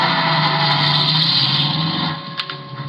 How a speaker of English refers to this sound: But when I peeked over the top of the stairs, he was in his car and going.